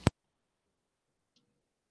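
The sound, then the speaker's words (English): A single sharp click of a mute button right at the start, crisp, followed by near silence with only a faint tiny tick later on. “I hear it clicking.”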